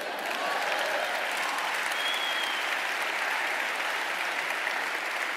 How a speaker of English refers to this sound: So as awesome as that feels, and as much as we clap it up, you're doing the same in your business, and so am I.